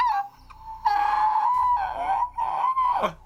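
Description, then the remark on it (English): A loud, high-pitched scream of agonizing pain from inside, behind a shut door, held for about three seconds with a wavering, strained pitch before it breaks and drops away at the end. “Okay, so you're going to hear a scream of agonizing pain inside.”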